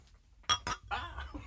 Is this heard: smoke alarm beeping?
no